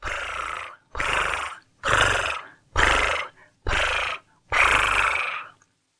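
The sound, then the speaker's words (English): As a breathing exercise, a person imitates a cat's purr on each out-breath, six times in a steady rhythm, each a loud, raspy, rumbling burst lasting under a second, separated by short pauses for breath. “Breathe in, and as you breathe out, purr. Purr, purr, purr, purr, purr, purr. Breathe in, and purr.”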